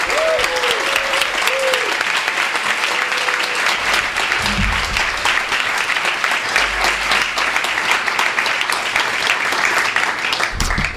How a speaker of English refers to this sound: So let's please give him a warm round of applause.